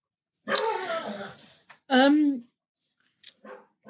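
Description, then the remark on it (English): A dog lets out a drawn-out growling whine, then a higher whimpering yelp, followed by a couple of short softer whines, fairly loud. “Sorry, your dog's got plenty to say on that.”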